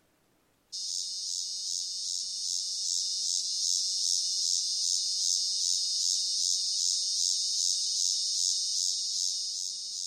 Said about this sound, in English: why don't we go to the cicada? They're curious species themselves.